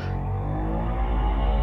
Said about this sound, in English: Oh my goodness, that's a motorbike outside my house.